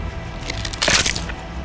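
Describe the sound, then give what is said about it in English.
A sharp, brittle snap as Oshun breaks a pigeon's neck with a quick twist in the damp, quiet early-morning woods rises out of a low, crackling hiss, a brief burst of bony cracking that quickly fades back into faint noise. No one speaks. “With a quick twist, she snapped its neck.”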